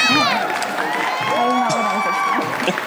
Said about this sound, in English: So why don't we give our guest a real proper introduction? Yes. You know the usual that we gotta do. You know. Gotta give her the special treatment. All right. Hello, hello. Yeah. Come on, more claps. Yeah.